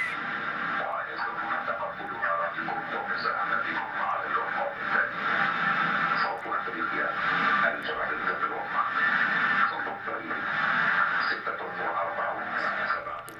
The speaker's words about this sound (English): We are still picking up some interference. You know, there's a conflict in Ukraine. They're trying to crack our frequencies, 102.5 megahertz.